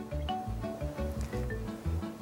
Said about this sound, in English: Here we are in the chemistry lab. Now, this is my beaker full of normal, clear water. And all I'm going to do is pour it into another beaker where it will mysteriously and instantly freeze right before your eyes.